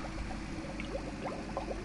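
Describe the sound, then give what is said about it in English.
Water bubbles and gurgles steadily over a constant low hum, with small rising burbles popping up throughout, from tanks of water at the Plymouth Marine Laboratory: rows of deep baths and a series of 10 oil-drum-sized tanks used to study ocean acidification. No one speaks. “Steve Widdicombe's laboratory is filled with tanks of water, from rows of deep baths in the centre of the room”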